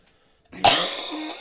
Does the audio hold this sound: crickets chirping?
no